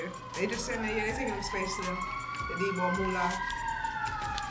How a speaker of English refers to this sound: These sirens. Shit.